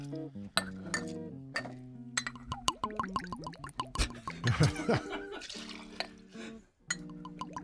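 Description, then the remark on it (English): Glugging as about 2 ounces of Goodnight Loving vodka pours from its frosted glass bottle, gurgles rising in pitch as the glass fills, with light glassy clinks before and after. “The shape of this bottle is creating a unique sound when it pours.”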